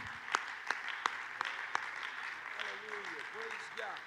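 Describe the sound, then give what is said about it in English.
An audience claps hands to thank the Lord in a steady rhythm, five sharp beats about a third of a second apart, over a murmuring crowd; the claps then fade as voices carry on. “Let's clap our hands and thank the Lord for the kingdom of God.”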